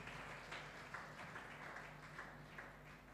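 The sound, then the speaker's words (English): A church audience claps hands for Jesus in a steady, dense patter of many hands, fairly soft, with a low hum underneath and no voices standing out. “Clap your hand for Jesus.”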